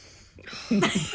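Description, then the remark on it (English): A voice imitates a big, exaggerated deep belly breath: a brief quiet intake followed by a loud, forceful, breathy exhale with a slight voiced rasp. “When you do your deep breaths, I always think you're mad at me.”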